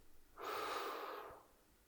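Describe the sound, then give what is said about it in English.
A single long, deep breath drawn in through the nose or mouth during a guided relaxation exercise, a soft airy rush that swells and then tapers away, with quiet otherwise. “And focus your attention on your breathing just for a few moments now. Inhale.”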